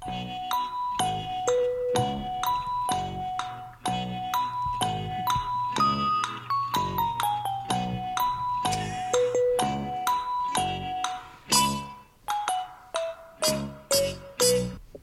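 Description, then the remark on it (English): A bouncy quiz-show style waiting tune plays on its own, bright plinking bell-like notes stepping along in a steady rhythm over a low sustained bass, with no one talking. “All I heard was a bunch of music.”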